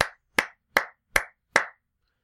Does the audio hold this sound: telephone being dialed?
no